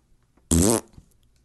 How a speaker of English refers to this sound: Yes, one of those was the sound of a fart. And one was the word fart, and banana was in the middle.